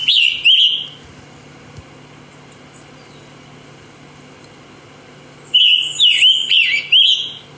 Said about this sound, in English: a scarlet tanager has been waking me up in the morning singing. And a big maple tree outside my bedroom. Let's take a listen here. So here's the scarlet tanager, one of the most beautiful birds, and a beautiful song as well. Here it is.